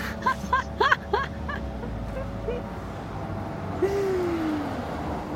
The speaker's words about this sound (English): Get rid of all this traffic for you. Or maybe you want the traffic, I don't know.